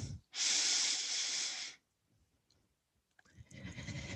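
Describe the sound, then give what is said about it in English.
A long, loud, airy breath drawn in for over a second while lifting the chest and reaching up the arm, followed by a quiet pause and then another rushing breath building up at the end. “Breathe in, lift your chest, then the arm, reach for the full breath in.”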